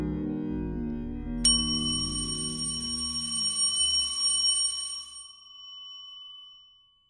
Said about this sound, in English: Ring the bell to get started over. Go ahead. You can see the bell inside, child. Reach out and touch the bell in front of you.